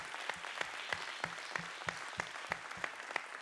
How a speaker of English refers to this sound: Raise your hand if you were a part of that launch team. Amen. Let's give these folks a great big round of applause.